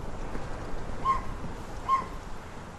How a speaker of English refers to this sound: Some distant birds and wind.